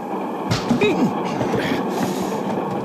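A moving passenger train rumbles and rattles steadily on the rails, a dense continuous clatter, with a brief murmur of a voice partly buried beneath it.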